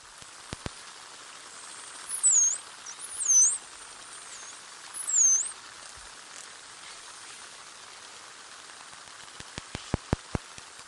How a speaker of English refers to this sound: From these high-pitched clicks of dolphins to the low rumble of whale song, Kim Goetz hopes to pick up sounds of several marine mammal species, including, possibly, even some that haven't been seen in New Zealand waters before.